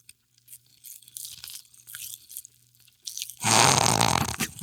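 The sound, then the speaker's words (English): Mouth sounds of someone chewing a small handful of popping candy that crackles rather than pops, with scattered tiny snaps and crackles, then a sudden loud, rough burst of crunching noise near the end. “Nothing's happening. They're not popping. They're crackling.”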